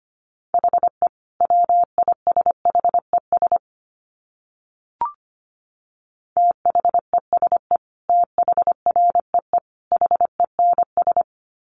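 Fast Morse code at 25 words per minute: a steady mid-pitched tone keyed into quick dots and dashes, in two runs split by a pause with a brief click, no voices.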